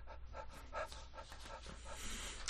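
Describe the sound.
A person pants at a table: quick, rhythmic panting, a steady run of short, breathy huffs in a dog-like rhythm, fairly quiet, with no talking over it.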